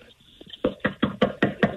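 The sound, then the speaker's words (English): A man pounds aggressively on a door to get a prize winner to open it: six heavy, rapid knocks in an even rhythm, loud, following a brief near-silent moment. “Let's have him knock on the door and get the winner to the door.”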